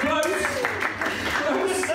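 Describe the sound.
Scattered hand claps from a small group applauding a correct answer to a quiz question on how many days are in a year, loose and uneven in rhythm, mixed with overlapping voices and chatter throughout.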